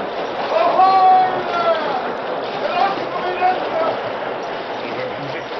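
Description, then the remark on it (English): Steady, rushing churn of a steamboat's paddle wheels whipping the water into white foam as its engine reverses, a dense continuous wash filling the whole stretch, with voices faintly audible over the noise. “The mighty paddle wheels whipped the water into white foam.”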